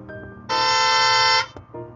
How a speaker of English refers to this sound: Yeah, bump your horns if you're in the car listening, because I'm so ecstatic.